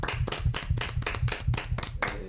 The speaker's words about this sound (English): So let's give the boy a round of applause one time.